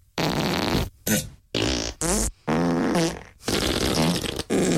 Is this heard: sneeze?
no